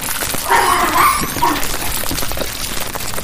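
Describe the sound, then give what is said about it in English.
A bunch of puppies yip and bark in a quick, overlapping flurry of high-pitched cries, then trail off into a noisy, rustling background. “That's a lot of puppies.”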